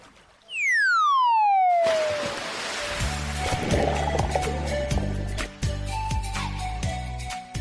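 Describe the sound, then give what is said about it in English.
A falling whistle swoops down into a loud splash, followed by several seconds of churning, gurgling water and bubbles, like someone diving in. No one speaks. “There we are. We've dived in.”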